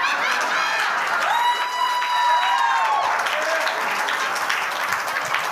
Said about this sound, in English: You clap.